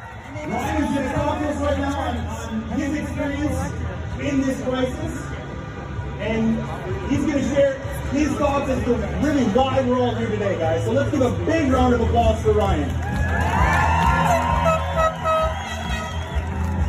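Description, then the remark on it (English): A dense crowd of voices shouts and chants together at a rally in a steady, continuous roar, with car horns tooting through the din and a higher rising blare near the end. “Let me tell you, if you've seen any going around on the internet, if you can listen to the chants here, do you hear any people shouting in German?”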